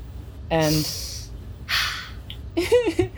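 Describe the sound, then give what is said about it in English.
A voice imitates a man intensely sniffing the air: several sharp, breathy intakes of air in separate bursts, followed by a short wavering vocal sound. “So this guy's been, like, sniffling like he's crying, but the sniffling has taken on this more intense, like, punctuative character, almost like he's sniffing the air.”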